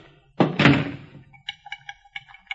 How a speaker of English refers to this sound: The back door's wide open. I'll close it. Wait a minute, don't touch it. Don't touch that knob. Kick it shut.